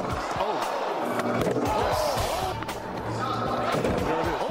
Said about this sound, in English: I would say that's a good dunk.